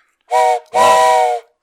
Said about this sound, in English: Mark actually has a train whistle.